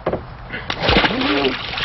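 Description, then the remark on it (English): A loud splash as a person gets into cold water, followed by a second or so of churning, sloshing water, with a brief vocal sound like a sharp gasp mixed in. “come over here and get into the water”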